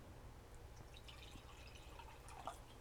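Sparkling water with a little bit of lemon pours into a glass with a soft, steady fizz and scattered crackling bubbles, fairly quiet over a low background hum, with a brief splash near the end.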